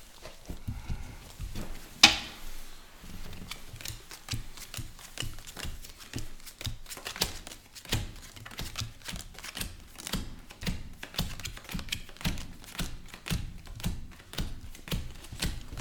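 Quick, crisp slaps and taps of playing cards being split from one large pile into five equal piles on a table, a steady irregular patter of flicks running throughout, with one sharper snap early on.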